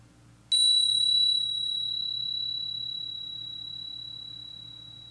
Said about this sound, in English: So I'll ring the bell once to start and once to end.